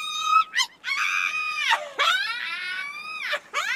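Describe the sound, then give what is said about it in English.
A harpy, a creature the size of a vulture, gives a shrill, wavering scream that rises and falls in several harsh, harmonic-rich bursts with short breaks between them. Loud, with no talking over it. “If you're trying to stop us, then you better be ready to fight as well as scream.”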